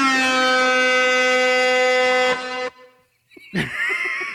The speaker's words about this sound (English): You get a special air horn for that.